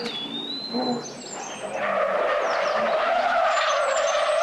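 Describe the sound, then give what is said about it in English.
A car driven wildly out in the middle of nowhere speeds up with a rising engine, then its tires break into a loud, sustained skidding screech that wavers in pitch and holds steady to the end, with no talking. “Who is driving like a madman out here in the middle of nowhere?”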